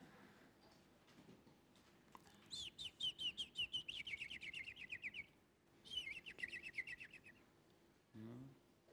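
A fake bird chirping sound effect plays in two bursts of rapid, high, repeated tweets, the first lasting about three seconds and the second shorter, clear with no talking.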